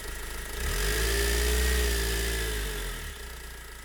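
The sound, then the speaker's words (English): A car engine hums steadily, its low drone swelling as the vehicle drives forward along forest tracks near Pripyat, then easing back toward an idle. No voices. “We got into the tracks to the forest and drove in as much as we could.”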